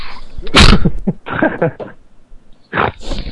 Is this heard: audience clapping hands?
no